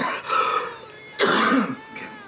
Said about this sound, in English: Coughing's good. It opens up the capillaries, you know. When you cough, you're pulling air, or in this case, I'll be right there. Smoke, into parts of the lungs that don't normally get used. And so coughing's good.